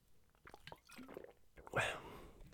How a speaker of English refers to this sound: Let me take a sip here.